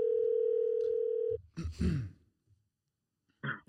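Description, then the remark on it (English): A steady, unbroken telephone dial tone, heard right before a phone call, hums loudly for over a second, then cuts off abruptly, followed by a heavy breathy sigh and a brief shuffling noise. “Right before the phone call.”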